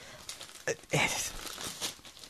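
Gift wrapping paper printed with a pop singer's design is torn open, a few sharp ripping bursts followed by steady crinkling and rustling over a couple of seconds, with no voices.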